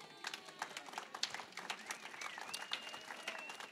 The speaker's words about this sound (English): So you can clap.